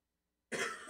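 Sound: man coughing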